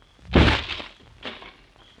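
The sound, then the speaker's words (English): A heavy kick lands on a door at night in moonlight with a loud, splintering thud, followed by a softer rattling crack as it gives way and a faint scrape after. “Step back, will you? I'm going to kick open the door.”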